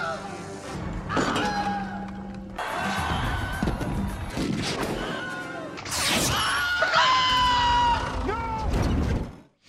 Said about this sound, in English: love the Wilhelm scream. Greatest thing ever.